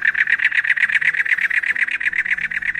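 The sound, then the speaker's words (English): Cactus wren song: a loud, steady run of harsh, raspy chugging notes repeated rapidly at an even pace, like an engine cranking without catching, with no voices present. “Cactus wrens are very active, hopping on the ground, fanning their tails, and from the tops of cacti, singing a song that's been described as sounding like a car trying to start up.”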